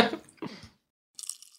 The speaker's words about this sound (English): They're like kind of fat potato chips, really. Yeah. I'm going to eat another one. I am too. Let's crunch. Okay. Yours just more sounds like you chewing with your mouth open. I have real crunching skill.